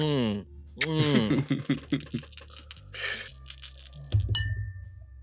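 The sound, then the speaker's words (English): Voices give way to a quick scatter of hard clicks and clinks as rolled dice tumble, ending with a brief ringing tap as a die hits a glass. “Okay, I got an 18. High roll. That's what I'm talking about. Hit my glass, and I got a 6.”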